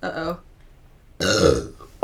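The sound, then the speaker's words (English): A loud burp rumbles out for about half a second after a short pause, preceded by a brief vocal sound and followed by another quick noise at the very end. “Okay, there's a lot of air in my chest. I need to burp.”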